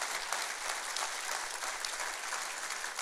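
A room full of people claps steadily for about three seconds, a dense, even wash of applause with no voices breaking through, fairly close and moderately loud.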